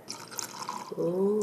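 Lagg whisky, straight from the cask, glugs and splashes from a sample bottle into a glass, starting with scattered drips and then a steady pour whose pitch rises as the glass fills, loud and alone near the end.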